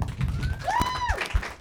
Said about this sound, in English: Welcome. I think we can give her a better round of applause than that.